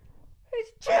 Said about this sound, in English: Okay, I'm not even going to edit that out. I had a sneeze.